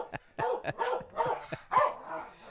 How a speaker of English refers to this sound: that barking thing out there. Yeah, that barking thing. That's Mahler, the too big to fail dog